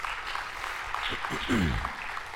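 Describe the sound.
An audience claps steadily in a dense, even patter of many hands, with a brief voice rising over the applause partway through.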